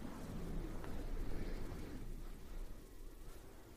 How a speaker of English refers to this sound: It's pretty big. It's an air purifier. So wonderfully soothing and quiet. I can sleep right on top of it.